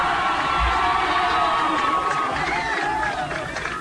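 A large crowd cheers and shouts continuously, with scattered high-pitched whoops and excited yelling rising over a dense, steady roar of voices, celebrating the Selinsgrove Seals' victory over the Jersey Shore Bulldogs as 2023 District 4 4A champions.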